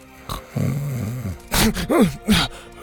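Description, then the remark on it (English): A voice imitates the character Gavin snoring: a drawn-out, wavering groan followed by several raspy, breathy snorts in uneven rhythm, fairly loud with no other sounds around it. “Gavin was snoring.”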